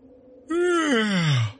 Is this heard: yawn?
yes